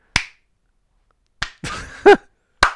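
Three sharp, sarcastic-sounding hand claps spaced slowly about a second apart, with a short murmured vocal sound between the second and third claps.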